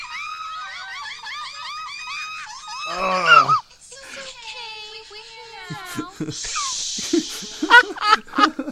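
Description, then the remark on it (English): A woman screams in a played clip: shrill, rapid, repeated wails, loud, then a harsh burst and more ragged shrieking mixed with other vocal sounds. “She's literally screaming bloody murder”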